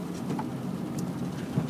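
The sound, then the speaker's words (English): Steady rain falls in a constant, moderate hiss on a Tuesday morning, with a few faint drips and chirps scattered through it and no voices. “On this beautiful, rainy Tuesday morning.”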